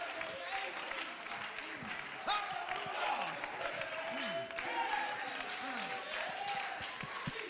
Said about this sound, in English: These clapping hands are driven by the soul that's touched God.